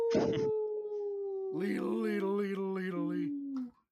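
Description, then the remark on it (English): A person imitates a wolf howling into the night with a long, wavering vocal howl that rises and dips in several pulses, following a brief burst of noise at the start, fairly loud. “The wolf number two, the one that just healed up, it is going to use its action to howl into the night.”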